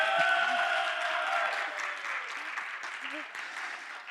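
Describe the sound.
An audience at Life Vineyard Church claps steadily for several seconds for the people who gave the announcements, a dense wash of many hands, with a few scattered voices and cheers mixed into the applause.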